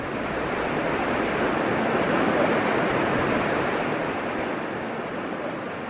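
A continuous, fairly loud wash of ocean waves around Nauru, with no distinct breaks or pauses, just a steady roar of surf throughout, with no voices.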